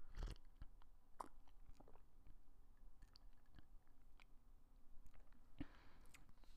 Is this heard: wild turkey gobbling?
no